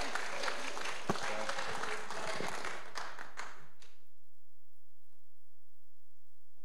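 An audience breaks into a round of applause, dense overlapping clapping for about four seconds that quickly fades out, leaving near silence with a faint low hum.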